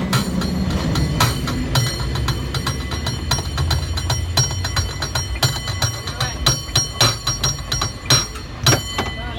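A cable car's bell, rung by the operator, clangs again and again in quick, uneven bursts of bright metallic strikes over a low, steady rumble of the car rolling along the track.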